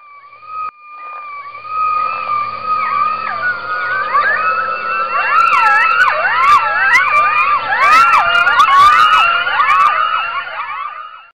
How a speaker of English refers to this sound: I'd like to start the show today by sitting back and listening to the enchanting call of the coyote.